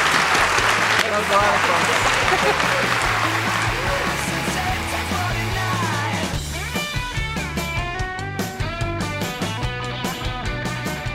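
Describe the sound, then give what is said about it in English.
A large audience claps loudly and steadily for about six seconds for Tom Perez, a dense wash of applause that gives way to rhythmic music with a bouncing bass line. “Everyone, could give Tom Perez a huge round of applause.”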